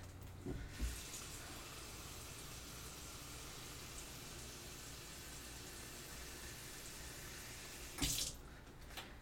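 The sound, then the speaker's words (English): Water runs steadily from a faucet for several seconds into a cup to measure water for rice, a continuous hiss with a brief clunk near the start and another sharp knock toward the end as the stream fills the cup. “Sorry, let me just get water for the rice.”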